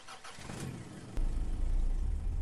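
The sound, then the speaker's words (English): A car engine cranks and catches about halfway through, then settles into a loud, steady low rumble with a slight rev, with no voices. “So let's get in the car and see what happens.”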